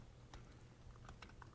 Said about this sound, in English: Whoa. Typing too fast.